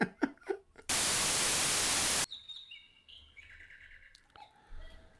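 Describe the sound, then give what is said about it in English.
A cuckoo clock calls with a few bright, whistly chirping notes, heard after a loud burst of hissing static. No one speaks. “You're the only person in the country who still has a cuckoo clock.”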